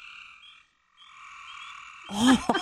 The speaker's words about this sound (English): Wow, yeah, they sound loud. It's all frogs.